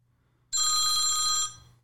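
A single loud telephone ring, an electronic bell-like trill with bright high tones, lasting about a second before cutting off, over a faint low hum. No one speaks.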